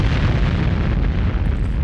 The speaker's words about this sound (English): Explosions for you.